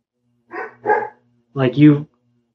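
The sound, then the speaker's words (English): A dog barks four times outdoors at night in pitch darkness: two quick barks, a brief pause, then two longer, fuller barks, against an otherwise quiet background. “I don't know who he's barking at.”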